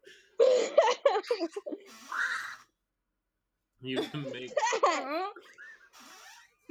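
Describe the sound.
A person's voice imitates a deer call with wavering, bleating cries, after a few quick spoken words and a short pause.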